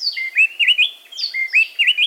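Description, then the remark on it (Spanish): A mated gray-breasted wood wren pair duets antiphonally in the mountains of southern Mexico, each bird singing one phrase, in rich, clear whistles, their rapid interlocking phrases repeating twice in a loud, lilting pattern with no talking. “Estamos a punto de escuchar el canto del saltapared pecho gris en las montañas del sur de México.”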